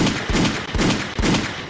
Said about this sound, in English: Gunshots, gunshots, gunshots.